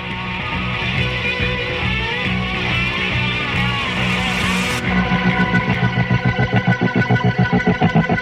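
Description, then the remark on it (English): Swirling, effects-heavy music gives way as the bassist stomps on a tremolo pedal: loud, low bass guitar notes chopped into a fast, steady pulse of throbbing beats for the last few seconds. “it's time for him to stomp on his tremolo pedal and plunge the song into total darkness.”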